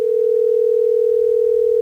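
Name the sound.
telephone dial tone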